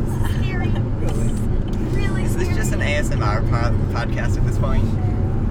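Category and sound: vehicle, car driving on highway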